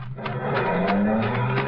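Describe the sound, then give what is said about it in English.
A car engine revs up and pulls away from a gateway, its tone climbing over a rough, noisy wash with bursts that suggest tires squealing, with no voices. “All I know is that a car was parked at the deep end of the gateway and two men were just climbing into it.”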